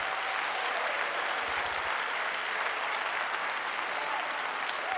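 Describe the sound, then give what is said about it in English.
An audience claps their hands to praise the Lord in a dense, steady burst of applause that stays loud and even throughout, with many overlapping claps and no clear rhythm. “If you think you understand half of what I'm saying, would you clap your hands and praise the Lord?”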